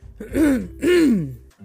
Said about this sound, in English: I am so sorry for clearing my throat in your ear.